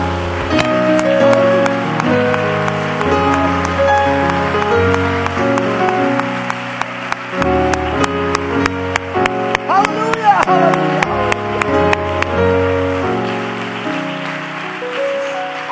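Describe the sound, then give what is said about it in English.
An audience claps their hands unto the Lord, a dense, lively patter of many hands that continues throughout, mixed in with sustained keyboard or organ music playing at the same time. “Would you put your Bibles down now, and wherever you are, would you clap your hands unto the Lord?”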